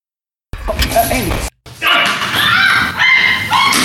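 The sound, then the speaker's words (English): A dog, Murphy, makes loud, agitated noises: a second of yelping and whining, a brief pause, then a longer stretch of rough, continuous barking. “That was newcomer Murphy to the scene, my dog, who decided to go”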